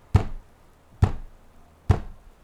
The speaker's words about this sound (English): The rhythmic pounding on the door started once again.